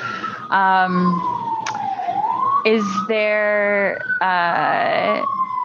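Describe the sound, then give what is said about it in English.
A loud emergency vehicle siren wails and sweeps in pitch on a New York City street, broken up by several blaring horn blasts, continuous throughout. “And by the way, apologies on the New York siren in the background.”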